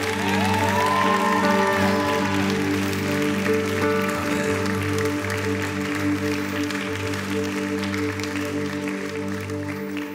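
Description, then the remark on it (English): An audience claps hands to the Lord in worship, steadily and continuously, over loud sustained music with held keyboard-like chords, with a few faint cheers mixed into the dense clapping. “Are you clapping hands to the Lord?”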